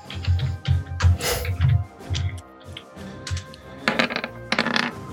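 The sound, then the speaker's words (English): A burst of small hard clattering, a d10 die rattling and tumbling across a surface in quick irregular clicks during a tabletop game battle, fairly loud, settling over a few seconds with no talking. “Roll me a d10 plus 10.”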